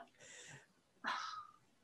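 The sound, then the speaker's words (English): Breathy panting and wet licking noises from a dog licking a person's face, coming in two short bursts with a brief pause between them. “Let the dog lick your face.”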